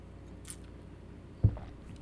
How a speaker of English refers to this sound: I'm sorry, I need to take a sip.